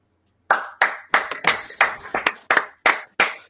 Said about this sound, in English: Clap.